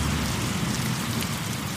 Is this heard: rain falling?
yes